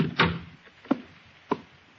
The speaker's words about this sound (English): Well, in that case, maybe you ought to shut the door.